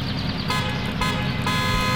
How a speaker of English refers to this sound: Was that honking really necessary?